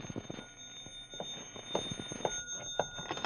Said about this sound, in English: And then the phone rang.